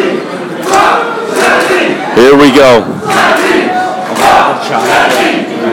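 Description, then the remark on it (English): A wrestling crowd roars and chants in unison, a loud sustained wall of voices with a rising, sing-song shout in the middle and waves of cheering that swell and fall. “Just let the crowd do their own thing.”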